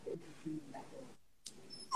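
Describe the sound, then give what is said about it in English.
A dog whimpers softly, giving a few low whiny murmurs, a pause, then a sharper high-pitched whine that slides downward at the end. No one speaks. “I'm so sorry to everybody about the dog.”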